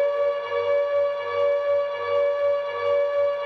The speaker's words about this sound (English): It started with a random tweet from the Konami Twitter account sharing this undeniably creepy sound effect. Along with the sound clip, Konami wrote, "Close your eyes. Always scary Silent Hill 2 siren."